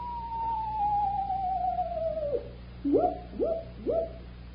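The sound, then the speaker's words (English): A person imitates owl calls: one long, drawn-out falling hoot, then three short, evenly spaced hoots in quick succession, clear and moderately loud against a quiet outdoor background. “There's two owls.”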